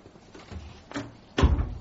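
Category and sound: household object, door being closed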